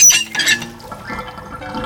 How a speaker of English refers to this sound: What? Oh, no! The bathtub water totally drained, even though I had the plug in.